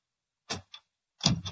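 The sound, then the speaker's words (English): A stuck, locked door being tugged without opening: a heavy rattling clunk, a short click, then a longer, louder rattle and thump as the handle is jerked again. No voices. “Open the door easy.”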